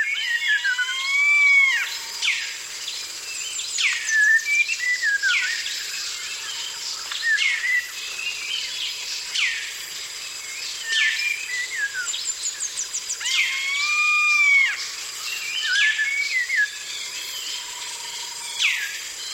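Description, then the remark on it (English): A dense jungle dawn chorus recorded by Jean Rocher along the banks of the Kinabatangan River in Borneo: many birds overlapping with whistles, rising and falling calls and rapid chirps, over a steady high insect-like hiss, continuous and fairly loud with no voices. “Jean Rocher recorded this dawn chorus in the jungles along the banks of the Kinabathangan River in Borneo.”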